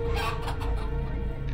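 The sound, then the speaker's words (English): Chickens cluck in a chicken coop in a few short, irregular bursts, over a steady low hum of background noise, with no one speaking. “Then Caleb took me to the chicken coop.”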